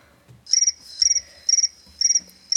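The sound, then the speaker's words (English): Crickets chirp in a steady rhythm, five loud, shrill bursts of rapid trilling pulses spaced about half a second apart, clear with no talking. “As you try to figure out the answer to each question, I'll play the sound of the crickets while you think.”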